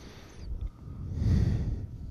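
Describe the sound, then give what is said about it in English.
Heavy breathing right into a microphone, muffled, with a rough low rush of air that swells louder midway through; no one speaks. “Whose breathing am I hearing?”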